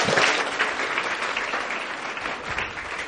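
A crowd applauds steadily, a dense wash of many hands clapping at an even loudness for the whole stretch, with no voices breaking through.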